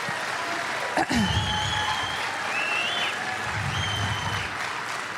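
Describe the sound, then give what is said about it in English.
An audience claps in a steady, dense round of applause lasting the whole stretch as speaker Dr. McCullough comes up to give a talk, with a few faint high whistle-like tones and murmurs mixed into the clapping. “And so let's go ahead and give him a big round of applause as he comes up.”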